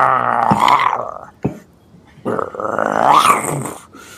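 Two drawn-out, rumbling growls from a voice imitating a beast, fairly loud, separated by a short pause and a brief sharp catch of breath, as growls coming from inside the runes in a Skyrim story.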